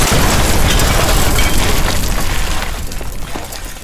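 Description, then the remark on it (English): A loud, sustained explosion roars with deep rumbling and crackling debris, starting with a sharp blast and slowly fading over several seconds. No voices are heard. “after all that explosion and sounds and cleaning off all the debris of the blast from the past”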